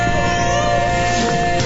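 Tiki, the cat mascot of WTKI radio, meows in one drawn-out, steady cry lasting under two seconds, loud, with no voices around it.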